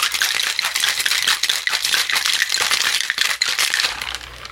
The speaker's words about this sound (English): Put on the shaker top, and we will shake pretty aggressively for about 30 seconds.